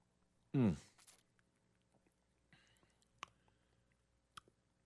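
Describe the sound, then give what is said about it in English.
A loud slurping sip of Breckenridge Brewery Christmas Ale near the start, followed by quiet swallowing, small mouth clicks and soft smacking in otherwise hushed surroundings. “All right, let's take a sip.”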